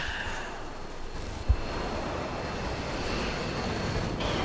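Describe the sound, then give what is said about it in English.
A video game drone flying overhead, heard as a steady, continuous droning roar with a faint whine, holding at an even level throughout, with one brief low thump partway in and no talking. “You just got drone killed, huh?”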